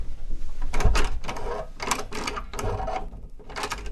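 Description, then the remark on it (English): A stiff, hard-to-open door being worked open, with a series of loud rattling and scraping bursts in an uneven rhythm over several seconds. No one speaks. “And the door, it's very hard to open, opened.”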